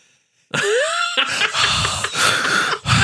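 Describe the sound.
A voice imitates heavy, raspy breathing, like the deep breathing heard from the hand's point of view in the movie The Hand. It starts with a wheezy, moaning inhale, then rough, loud breaths that keep going for a few seconds with a brief pause near the end.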